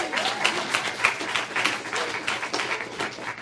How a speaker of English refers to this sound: And so we have three young ladies today that are coming to declare their faith publicly in Jesus Christ as a follower. So I'm going to ask all three of you to go ahead and come up. Yeah, you clap for them.